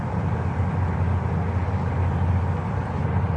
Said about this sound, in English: Oh, wait, hold on. Did you just get on a bus?